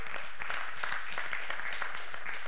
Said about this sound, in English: 5 people out of all of us heard the gospel one time and met Jesus. That is wonderful. We ought to give God applause for that.